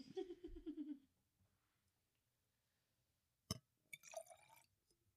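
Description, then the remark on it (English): A short burst of a previously frozen drink being poured from a twist-open bottle into drinking glasses, its tone rising as it fills, then a pause, a sharp glassy tap, and another brief trickling pour evening out the glasses, all quiet. “Oh, I think I unevenly poured that. Let me fix.”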